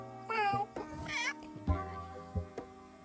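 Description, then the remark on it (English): A voice imitates a cat's meow, drawn-out wavering mews followed by a few shorter ones, fairly loud with no other talk. “Meow. Meow. Meow. Meow.”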